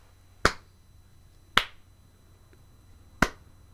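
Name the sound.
hand clapping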